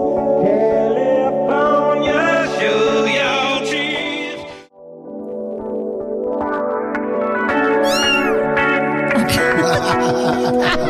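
A loud, dense remix mashup of pop and rock songs is played on Cork's Red FM radio breakfast show. Layered sung vocals ride over steady guitars and a driving beat, briefly dropping out near the middle before surging back in full.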